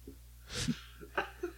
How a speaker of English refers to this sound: It just sounds like mini me sneezing. Love that guy.